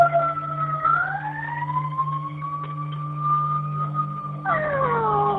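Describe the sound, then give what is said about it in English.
An ambulance siren wails steadily, its pitch slowly rising and falling, then jumps to a new tone near the end, over a constant low engine drone. No one speaks. “Okay, see the ambulance?”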